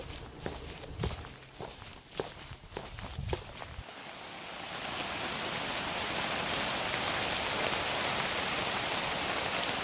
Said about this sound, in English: So it's been raining for a good 36 hours now.